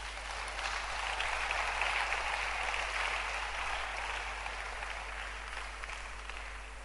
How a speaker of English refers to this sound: Clap your hands for her.